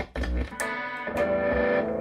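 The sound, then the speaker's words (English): A distorted electric guitar played through an Orange amp and an MXR Distortion Plus pedal plays loud, crunchy chords with sharp pick attacks and sustained, buzzing overdriven tone ringing between strums; no one speaks. “You take my MXR Distortion Plus, and I'm going to plug directly into my orange amp, because fuck that Big Muff.”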